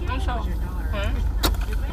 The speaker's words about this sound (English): Oh, y'all, I'm only in a car.